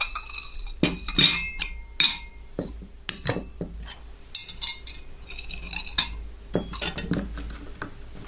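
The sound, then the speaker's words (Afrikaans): Cups and cutlery clink while coffee is made: a string of sharp, bright chinks at irregular intervals, with spoons tapping and crockery knocking over a low, steady background hum. No one speaks. “Ek maak so lank koffie.”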